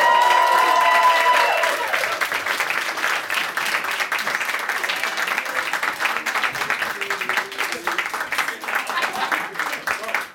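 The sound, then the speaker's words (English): A crowd applauds loudly and steadily for the Regular Features Live show, dense clapping for the whole stretch, with some cheering or voices at the very start before the clapping settles into a sustained roar. “Can't stop applauding!”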